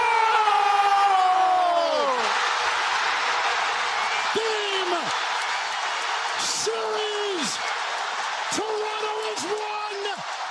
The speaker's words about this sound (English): You can hear this pause after the buzzer, where the basketball is still bouncing off the rim, and it's unclear if it's gonna go in or not. And then it does.